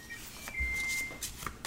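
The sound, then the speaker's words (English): A small stack of nine playing cards, taken from a deck, is shuffled together, giving a few quick, soft papery riffles and rustles in short bursts, with a faint steady tone humming in the background. “And mix that 9 up. Just shuffle the 9 cards together.”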